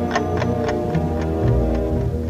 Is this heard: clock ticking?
yes